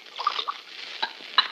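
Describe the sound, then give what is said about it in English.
Water pours from a carafe beside a bed in a short, gurgling trickle with a few bubbly splashes, fairly quiet, lasting about a second and a half with no talking. “There is a carafe of water beside the bed.”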